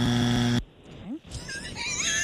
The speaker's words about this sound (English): He loves that buzzer. I do.